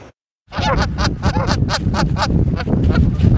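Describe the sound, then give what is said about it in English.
Canada geese honk over and over in a dense, overlapping chorus, loud, starting right after a brief moment of silence, with a low rumbling background underneath, at Kin Beach in Vernon. “What to do about rising bird populations, namely those often ornery and messy Canada geese?”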